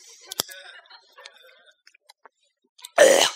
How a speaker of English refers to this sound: The pastor burps.